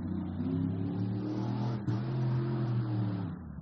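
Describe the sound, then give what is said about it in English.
A car passes by outside, its steady engine drone humming loudly for a few seconds with a brief dip and shift in pitch midway. No one speaks. “I was just waiting for the car to pass by.”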